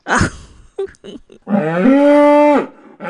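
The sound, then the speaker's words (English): A cow lets out one long, loud moo lasting about a second, steady in pitch, after a few brief shuffling knocks and a short snort. “I brought a cow.”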